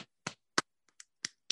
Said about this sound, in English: Yeah, I think we should do a round of applause.